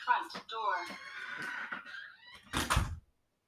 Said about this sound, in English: Front door.